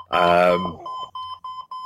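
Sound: alarm going off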